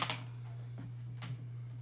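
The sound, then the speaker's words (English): A die rolled on the floor clatters: a quick pair of sharp clicks, then a few scattered taps as it tumbles and settles. Fairly quiet, over a low steady hum, with no talking. “I would prefer that my die be kept on the floor, please.”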